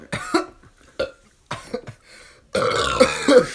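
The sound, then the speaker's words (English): A few short gulping or gasping sounds while chugging a drink lead into a long, loud, drawn-out burp that rumbles for over a second. “Y'all are some CEO of Burp.”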